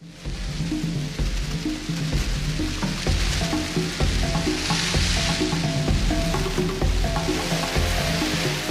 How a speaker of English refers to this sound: What I've got is a little clip for you today that just gives you the feel of what happens when the locusts visit town.